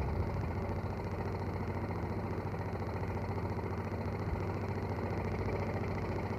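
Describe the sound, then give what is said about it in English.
A veteran car engine idles steadily in traffic on a road on a gloomy afternoon, a continuous low rumbling chug with a faint rattle, holding an even level throughout with no voices. “We are making a certain amount of progress, but the traffic has begun to move again.”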